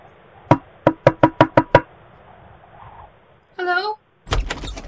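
Seven quick, sharp knocks on wood, a pause, then a squeaky hinge creak as a door swings open during a snowstorm, followed by a brief clattering thud.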